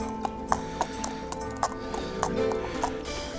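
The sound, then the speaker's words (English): The hooves of Binky the horse clip-clop at a steady, unhurried walking pace, each sharp knock ringing out over a low continuous hum. “Here, Binky, gotta tie you up here, mate, yeah? Just be a good horse, and I'll be back soon enough.”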